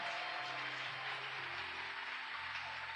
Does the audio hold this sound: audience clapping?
yes